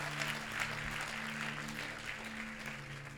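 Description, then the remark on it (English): The Zoe Church audience claps and applauds steadily to thank the Lord, a dense wash of many overlapping hand claps at even loudness throughout, with a low sustained organ-like tone humming underneath. “Oh, come on, Zoe Church, if you want to experience true freedom, come on, just a clap and applaud and thank the Lord for true freedom in Jesus.”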